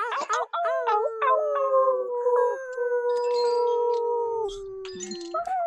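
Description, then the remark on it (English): Several people on an online call unmute their microphones and imitate wolf howls together, starting with a few short rising yips before settling into long, overlapping howls that hold steady and slowly fall in pitch, loud. “Let's make a little bit of some wolf noises, send some love to the people out there.”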